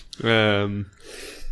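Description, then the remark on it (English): A single loud sneeze: a sharp voiced intake rising into a strong burst, then trailing off into a breathy, hissing exhale. No speech accompanies it. “I'm so sorry, listeners, for popping your eardrums with a sneeze.”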